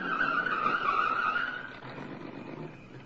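A car pulls up and skids to a stop, its tires letting out a loud, wavering screech for over a second before fading into a low rumble of engine and road noise.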